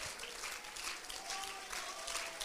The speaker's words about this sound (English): Would somebody clap their hands and bless him right now? Bless him right now.